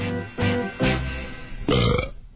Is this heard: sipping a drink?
no